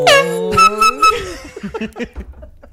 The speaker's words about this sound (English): You know, he's got an air horn to celebrate with.